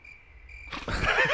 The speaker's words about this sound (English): never mind, run the crickets.